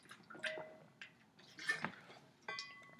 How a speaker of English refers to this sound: Hold on real quick, let me get a sip of water.